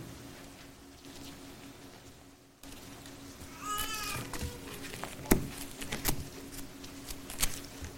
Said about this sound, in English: Good to hear those pages rustling and not just flipping it on your phone.